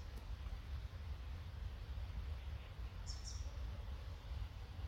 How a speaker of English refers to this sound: I have the birds above me.